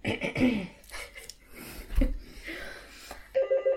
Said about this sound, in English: Oh, yes, we have a phone call.